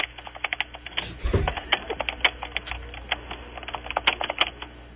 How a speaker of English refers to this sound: That sounded like a lot of typing for beat it. She's typing everything.